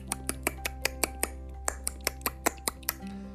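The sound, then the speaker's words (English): A person imitates dolphin clicking with the mouth, making a quick series of about a dozen sharp, bright clicks in an uneven rhythm, with no talking. “And so she ran over to the edge of the boat and started to click, that's how dolphins talk, like this.”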